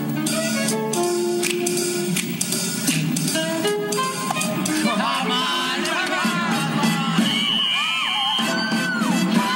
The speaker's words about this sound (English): I order all of you to applaud Fräulein Bonnie Bowles.